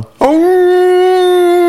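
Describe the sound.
A man in a film fight scene howls as Kato reaches down to grab him: a loud, sustained dog-like howl bursts in after a brief hush and holds one steady, slightly rising pitch to the end, alone with no talking.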